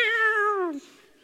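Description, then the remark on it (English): A bobtail cat named Bob, fighting a skunk under a house, lets out one loud, drawn-out yowl with a strained, nasal tone, its pitch sagging downward before it cuts off into near silence. “Bob got in a fight with a skunk under our house.”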